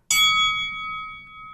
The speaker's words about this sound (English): See you in 9,999 years when it's going to, chime. Oh, yeah, that's the chime. Wait, that's the 10,000-year one.